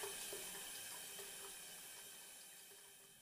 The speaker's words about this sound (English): The best chance of privacy is the shower cubicle and a curtain of water. I switch it on and peel off my clothes.